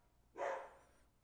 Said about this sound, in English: There's the doorbell and my dog.